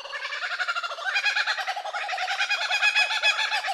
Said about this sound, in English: The laughing kookaburra, formerly known as the laughing jackass, is found only in Australia, Tasmania, and New Zealand